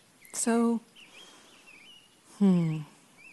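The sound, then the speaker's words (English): Faint, thin bird chirps and warbles drift in the background, broken by two louder, drawn-out harmonic calls about two seconds apart. “So, listening to the birds.”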